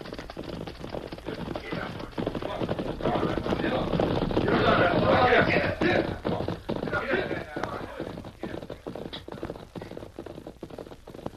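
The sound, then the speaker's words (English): A big bunch of riders on horseback gallops by along a trail, a dense, rapid drumming of hoofbeats that swells to its loudest as they pass, then gradually fades. “Riders in a big bunch.”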